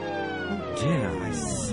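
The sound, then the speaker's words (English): A swamp toad squashed under a big toe lets out a short, squealing croak whose pitch swoops up and back down, ringing over a steady droning tone for under two seconds. “Well, apparently, my darling, my right big pinky toe pulverized a swamp toad.”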